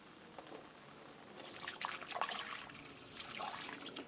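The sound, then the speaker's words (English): Milk pours into a hot pot of cooked butter and flour, made as a thickening agent for cream of cauliflower soup, and sets off a sharp, crackling sizzle that jumps in loudness partway through, then keeps hissing steadily with bright, popping bursts and no talking. “And then we're going to hit the pot with some of this milk. You'll hear it sizzle.”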